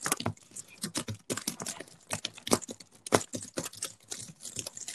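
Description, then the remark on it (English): Rapid, loud typing on a computer keyboard, with clattering keystrokes in quick irregular bursts and brief pauses between runs. No voices. “That sounds like pretty loud typing.”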